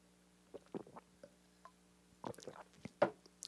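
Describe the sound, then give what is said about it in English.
Someone sips water: a few quiet, wet slurps and swallows in short bursts with pauses between them, and no talking. “So I'm going to take a sip of my water and not edit.”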